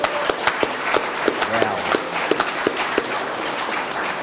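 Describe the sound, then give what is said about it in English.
A crowd at a recovery meeting claps for recovered alcoholics who stood up, honouring their honesty: dense overlapping handclaps with a few sharp individual claps standing out, a moderately loud burst of applause lasting several seconds without any speech. “Give them a round of applause for honesty.”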